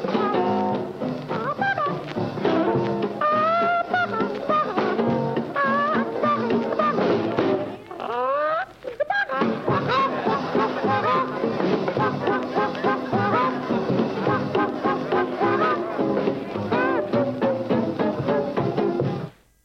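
A jazz recording from the 1940s plays loudly and steadily, with a voice making squawky, clucking chicken-like imitations over the band and a brief swooping break in the middle.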